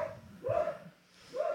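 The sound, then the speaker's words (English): A dog being walked by an old man barks twice in quick succession, with a short pause between the sharp yaps, and no one speaking. “A dog barking excessively up there.”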